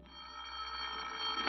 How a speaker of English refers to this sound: So the next day, during the autopsy, you sit at home quietly in the chair by the phone, waiting for it to ring.